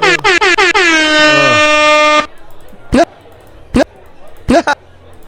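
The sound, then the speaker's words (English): A loud air horn fires off a few rapid stuttering toots, then holds one blaring blast for about two seconds before cutting off. Several short, sharp chirping bursts follow. “Did it replace the air horn?”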